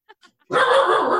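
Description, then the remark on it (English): A small dog named Charlie lets out two short, soft yips, then breaks into a loud, drawn-out bark that carries to the end, barking because someone came in the door. “Charlie's at my feet and I was barking because someone came in the door.”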